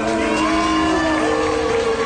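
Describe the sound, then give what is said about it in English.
A crowd at a vigil boos Florida Governor Ron DeSantis loudly and steadily, many voices merging into a sustained, low, droning jeer that holds without a break for the full two seconds. “Florida Republican Governor Ron DeSantis, who's running for the GOP nomination for president, attended the vigil and was booed.”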